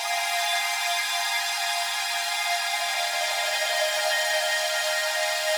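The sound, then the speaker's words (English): A heavily time-stretched synth sound, made from a long pass of overlapping notes from a square wave patch in Serum run through Valhalla Shimmer and stretched in Pool Stretch software, smeared into a steady, bright, buzzy drone with a faint shimmering texture, holding at a constant loud level with no speech. “So this is the more bleepy one that I was talking about. The sound ends up sounding like this.”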